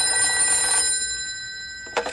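A telephone rings at Ranger headquarters with a steady, bright, trilling bell tone that holds for about two seconds, then a short sharp burst follows. No one speaks.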